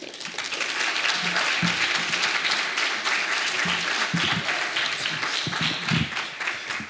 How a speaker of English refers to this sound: So if you could give a round of applause for Lenny.